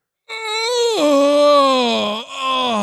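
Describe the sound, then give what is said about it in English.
A long, drawn-out vocal yawn, loud and alone, starting on a higher tone that slides down and holds for a couple of seconds before a brief dip and trailing off. “I had to yawn when you said my name.”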